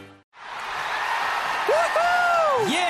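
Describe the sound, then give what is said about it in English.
A large crowd of Texans fans in Energy Stadium, Houston, roars and cheers in a dense, sustained wash of voices, with a few rising whoops and whistles cutting through near the end after a brief quiet moment at the start. “So what are you guys cheering about?”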